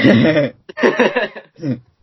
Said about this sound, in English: That moment when you start coughing. But then you realise you're a smoker and it's probably just cancer.